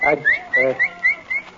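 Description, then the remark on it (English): A boy at home whistles a quick series of about six short, bright notes in a steady rhythm, like calling a dog, clear with no talking. “What week you been whistling like you was calling a dog?”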